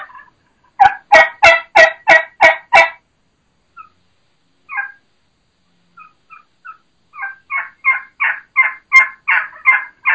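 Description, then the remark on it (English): A turkey gives a run of six loud, evenly spaced plain yelps, pauses with a few soft scattered notes, then starts a longer, steady series of raspy yelps. No one speaks. “There's your classic high-pitched, fast-paced, your normal, what normal people do, what normal hunters are using, just that normal, standard, plain yelp.”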